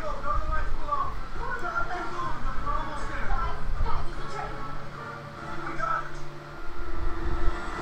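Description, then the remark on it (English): A train rushes along the tracks in a steady, loud rumbling roar with a low droning hum throughout, while voices murmur underneath the noise. “He's keeping up with a train and a minivan.”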